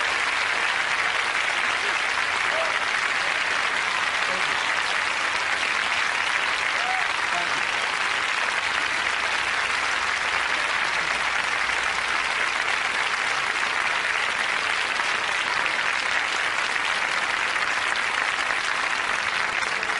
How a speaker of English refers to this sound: Let's give Mrs. Rosa Parks a round of applause, if you please.